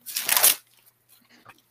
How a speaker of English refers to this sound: I have to look. Sorry for all the rustling paper.